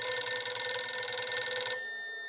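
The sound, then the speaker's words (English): A telephone bell rings in one rapid, trilling burst that stops abruptly, leaving a faint metallic hum to fade out: a harassing call to the Clements' home phone. The ring is clear, with no voices. “Somehow, McElroy got the Clements' home phone number and began a series of harassing calls.”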